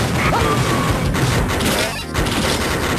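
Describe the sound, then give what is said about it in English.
Dense, loud burst of video game gunfire, shots crackling and booming over one another almost continuously with a brief dip near the end, a chaotic barrage with no voices. “Oh, it's all gunshots.”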